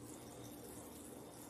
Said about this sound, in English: Okay, so this is starting to bubble, as you can see, but the wine was cold